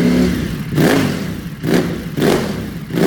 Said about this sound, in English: So, yeah, some nice sounding bikes. That's for sure. You know, if I could sit here and listen to exhaust all day.